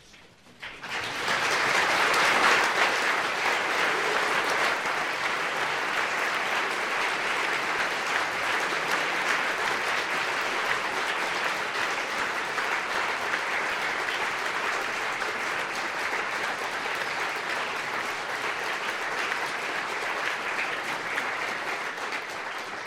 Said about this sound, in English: the warmth and strength of that applause says everything, I think.